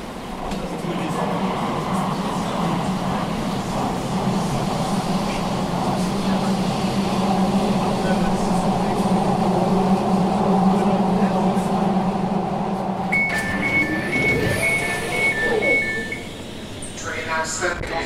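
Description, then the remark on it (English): An Elizabeth Line underground passenger train to Paddington rumbles and roars steadily and loudly while travelling between stations after Liverpool Street, with Farringdon next, before a short series of high electronic beeps sounds near the end as the noise eases. “This is the train to Paddington.”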